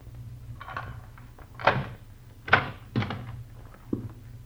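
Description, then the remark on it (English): A door opening, with a handful of knocking thuds and clunks spaced a second or so apart over a steady low hum, and no voices. “Close that door.”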